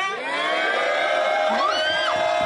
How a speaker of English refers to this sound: Yeah! Yeah! Crowd was already hyped. I like that.